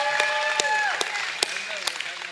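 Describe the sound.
Audience applause for an audience member: a steady wash of crowd clapping, punctuated by a few sharper, louder claps, with voices and cheering mixed in throughout.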